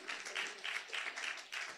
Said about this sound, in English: And so I've written 4 books. And praise the Lord. That's the place to clap at. Come on now.